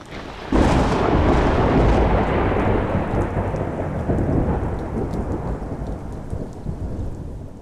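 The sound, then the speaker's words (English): A loud thunderclap bursts in after a brief quiet moment and rolls on as a long, rumbling roar, with steady heavy rain hissing underneath and gradually easing. No one speaks. “Morgan and Tara suddenly find their speeders surrounded by darkening storm clouds. Strong winds begin to buffet their ships.”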